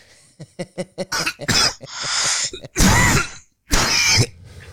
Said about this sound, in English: That cough's a bit dry.